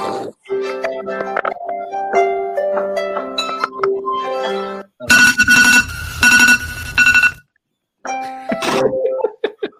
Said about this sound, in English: Android people when their alarm goes off. Jeez. That's me.